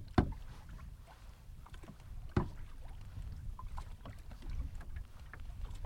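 A canoe paddle dips and pulls through water in two distinct strokes about two seconds apart, over a steady low wash of water and light wind, with no one talking, on a canoe trip in Quetico on a hot day.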